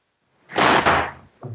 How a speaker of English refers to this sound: Whoa, is that a gunshot? No. That was my son slamming the door, not realizing that he's interrupting something.